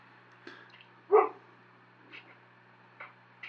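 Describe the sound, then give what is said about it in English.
A puppy being protective of its owner lets out one sharp, fairly loud bark midway, with a few faint, brief yips and snuffles scattered before and after against a quiet low hum; no one speaks. “Your puppy's being protective of you.”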